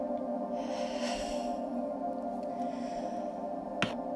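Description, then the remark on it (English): A slow, deep breath drawn in through the nose during a guided breathing exercise, a soft airy hiss lasting about a second over a steady, quiet musical drone, followed later by a single short click. “Breathing in through your nose, and on the exhale, breathe your breath all the way out.”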